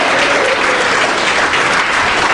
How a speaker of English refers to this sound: Will you welcome everybody who's watching online right now? We have a lot of people watching as well. Can you just, by round of applause, welcome them?